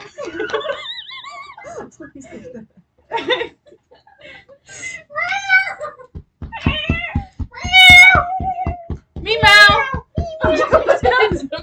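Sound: cat meowing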